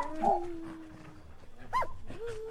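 A dog named Sparky yelps sharply, then lets out drawn-out, high-pitched whimpers and whines, with a rising cry near the end, as it is killed by whatever got the horse. The sounds are fairly loud over a quiet, slightly noisy background.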